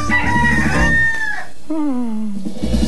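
A rooster crows a loud, drawn-out cock-a-doodle-doo, its pitch holding high before sliding down at the end, with bright music playing underneath, in a retro Kellogg's Corn Flakes advertisement featuring Cornelius Rooster.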